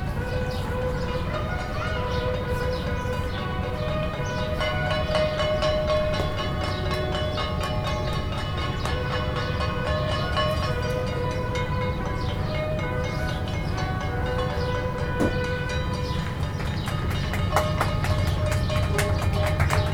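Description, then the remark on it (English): A continuous outdoor din of clapping, cheering and clanging pots and pans, with sustained brassy bugle notes ringing over the noisy crowd, in Gibraltar at 8 o'clock at night as people celebrate key workers. “Every night at 8 o'clock, we clap and cheer, bang pots and pans together, and even blow trumpets and bugles to celebrate our key workers.”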